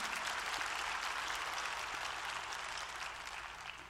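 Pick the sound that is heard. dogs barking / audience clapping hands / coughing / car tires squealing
audience clapping hands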